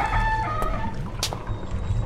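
A door, its handle turned and pushed, creaks open with a loud, drawn-out, high-pitched squeak that wavers in tone, followed by a short airy scrape over a low rumble; no one speaks.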